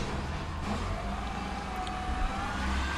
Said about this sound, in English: Just gonna wait for this truck to leave.